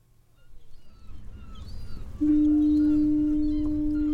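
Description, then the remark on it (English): A deep, loud foghorn blast starts about halfway through and holds steady as a single sustained tone, rising out of low rumbling wind or sea noise, with faint bird calls in the background. “Foghorns are interesting things, really, in phenomena, in that they aren't saying, come here.”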